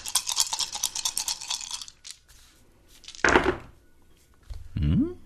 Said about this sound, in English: So let me just roll some dice here.